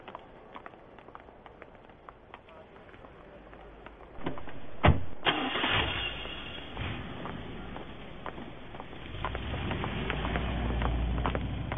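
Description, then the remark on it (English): A sharp mechanical clunk, then an old car engine catches and settles into a steady, throaty running rumble that grows slightly fuller toward the end, with no one talking. “Shall I call for your car as well”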